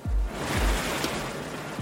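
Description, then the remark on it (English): A steady wash of waves and water fills a harbor scene, with occasional low thumps underneath and no voices, forming a continuous, fairly loud seaside ambience. “But the first stop is the harbor.”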